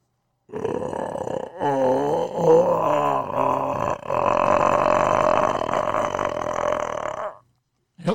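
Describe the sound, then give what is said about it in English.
A person imitates an animal growl with a long, rough, guttural rumble, loud and sustained for about seven seconds with a brief pause early on and wavering pitch, alone without talk. “This is a typical growl.”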